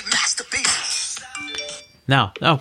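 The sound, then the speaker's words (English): Bright electronic phone notification chimes ring out with a few sustained tones over a busy, cluttered background, and then a person starts talking. “Notifications. Oh my goodness.”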